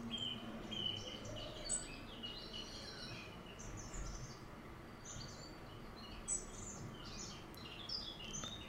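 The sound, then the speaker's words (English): Birds tweet and chirp in the background while someone is out for a walk, with scattered high calls spread across a quiet, steady outdoor hum and no one speaking. “Maybe it's birds tweeting in the background.”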